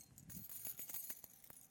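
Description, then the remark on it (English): Keys on a keychain jingle in a quick series of light metallic clinks and rattles, fairly quiet, with no voices. “I've used this illustration for years, but all of us have a keychain.”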